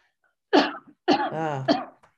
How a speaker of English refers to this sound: Cough break.